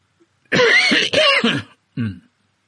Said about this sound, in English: I muted myself and coughed. I'm going to do it again.